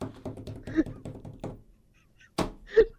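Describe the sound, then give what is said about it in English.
A voice mimics running away and slamming a door: quick rhythmic vocal patter like hurried footsteps, a pause, then one sharp, loud, breathy burst and a short voiced grunt. “Did that sound like I ran away and then slammed the door?”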